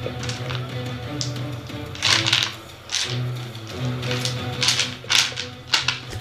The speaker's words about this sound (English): Right, I'm going to get all my bad rolls out now. and rolling all the dice.